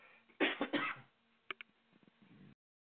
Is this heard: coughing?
yes